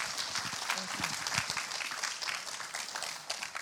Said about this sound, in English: So can we just give them a hand clap and welcome them this morning?